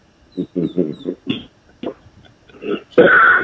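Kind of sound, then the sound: human body sound, cough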